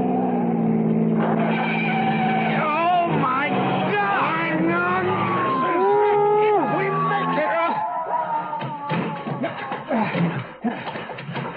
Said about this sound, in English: Now we've got him. I'm going to pass and crowd him onto the shoulder. Brace yourself just in case I flunk my driver's test.